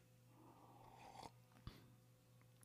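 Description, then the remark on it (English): Someone takes a quiet, brief slurping sip of coffee from a cup, followed by a soft clunk as it is set down, over a low steady background hum. “Have a sip of coffee, and I'll dig through one.”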